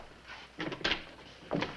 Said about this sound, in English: Oh, excuse me. I should know by now that when I open my door, I should be prepared to leap back madly.